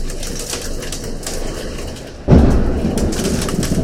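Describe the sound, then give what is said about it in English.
A steady, dense clatter of hail pelting and denting a car, joined midway by a sudden loud low rumble like thunder that keeps the storm roaring louder. “Holy crap, that's hail!”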